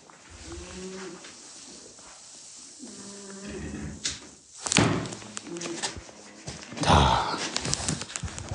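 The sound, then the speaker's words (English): Two sharp smacks against a wooden door frame, a couple of seconds apart, as someone swats at a big horsefly and misses twice, with cattle lowing steadily in the background. “Again, that's two misses.”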